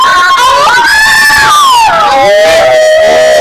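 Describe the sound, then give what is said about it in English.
A loud, drawn-out werewolf howl performed by human voices, rising in pitch then sliding slowly downward over about three seconds, with a couple of voices overlapping. “Should we do some werewolf howls and witches laughs?”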